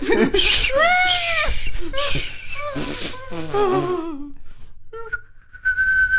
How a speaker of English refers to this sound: while you whistle under duress